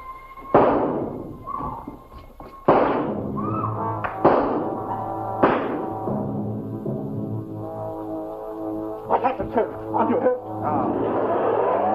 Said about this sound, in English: Like, that gun, like, it's supposed to be a gun. It's not great. But then, even better is the noise of the car driving away, or motorcycle, whatever the assassin jumped in to get away. Because it just sounds like somebody's doing a zipper.